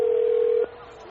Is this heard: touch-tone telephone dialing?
yes